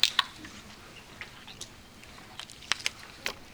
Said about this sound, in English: For that, I'm going to get a drink of water.